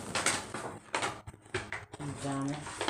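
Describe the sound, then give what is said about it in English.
A thick paper bag rustles and crinkles loudly in uneven, noisy bursts for a few seconds, with a person's voice briefly talking over the final stretch. “Look, she trying to be hella loud with the paper bag.”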